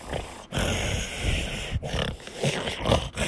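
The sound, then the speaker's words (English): A person pants loudly and heavily with an open mouth, in rough, breathy gusts with a couple of brief pauses, sounding almost dog-like. “When you're just breathing, can't you breathe with your mouth closed?”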